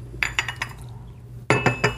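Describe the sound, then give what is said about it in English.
A coffee cup is set down on a table: a few light ceramic clinks, then a sharper, ringing knock as it lands, over a low steady hum. “kind of a slurp, the coffee cup goes down.”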